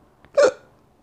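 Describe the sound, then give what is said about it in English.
A single sharp drunk hiccup, fairly loud, with a faint catch of breath just before it and quiet otherwise. “I got the drunk hiccups.”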